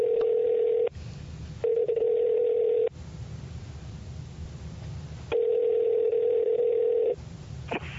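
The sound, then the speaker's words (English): A telephone line tone sounds in several steady, humming bursts broken by stretches of hissy line noise, as a call is dialed and waits to connect. No one speaks. “Let's get her on the phone and we'll see if she can change my mind. I will dial her up”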